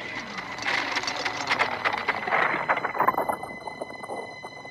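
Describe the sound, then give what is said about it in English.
A sci-fi transwarp drive effect going to maximum velocity: a dense, rattling mechanical whir full of rapid pulses, joined partway through by steady high-pitched whining tones that hold to the end. No one speaks. “Transwarp Drive, maximum velocity in 5, 4, 3, 2, 1.”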